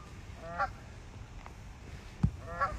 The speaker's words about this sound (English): I don't know if you can hear the ducks or not. Pretty beautiful. See the little ducks? Yeah. Yeah, see the ducks and see the little duckies?